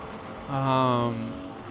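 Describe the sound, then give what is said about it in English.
A turbocharged hill climb car engine revs hard, its high-pitched, buzzing note swelling quickly, holding for a moment, then easing off. The burst is brief, with no one talking. “Is this a hill climb car? Or yes, it is a hill climb car.”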